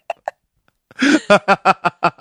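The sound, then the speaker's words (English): A couple of tiny vocal blips, then a loud burp, caused by eating charcuterie for dinner, that breaks into a quick run of rhythmic, breathy laughter bursts. “I can't stop burping.”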